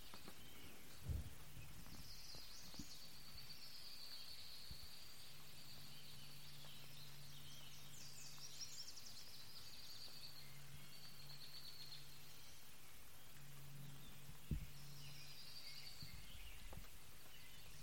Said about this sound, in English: Here's some more woodland noises from outside our yurt.